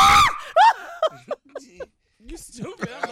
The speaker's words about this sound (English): I love when he screams. I know. I love it.